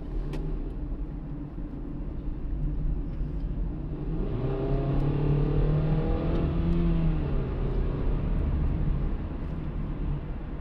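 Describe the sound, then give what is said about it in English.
A Chevy truck or SUV drives past, its engine note rising and falling as it passes over a steady, loud rumble of road noise; no one speaks. “Past this one guy, big truck person or SUV or whatever, but Chevy, it's a Chevy.”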